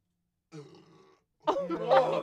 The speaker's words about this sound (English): I drank a full can of Pepsi in 2 minutes. Wow. I really had to burp, but I know. Don't do it in the mic. Just do it. Do it in the mic. That would have been a good time to burp.